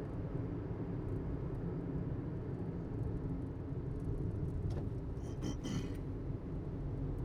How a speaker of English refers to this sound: Oh, goodness. I love trucks that just pull out in front of you.